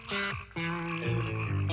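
A rock song recording: a loud, gritty riff of sustained, buzzing notes that step and slide between pitches, with a brief dip before the riff resumes. No one speaks.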